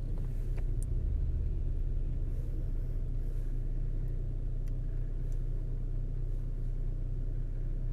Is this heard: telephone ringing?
no